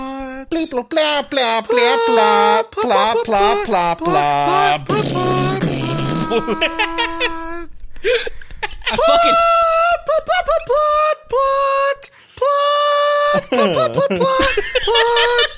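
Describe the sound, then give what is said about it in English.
A voice loudly sings the Super Mario theme melody using the word "plot" repeated over and over, in quick staccato bursts with brief pauses, and laughter mixed in. “He's doing the Mario song, but with plot.”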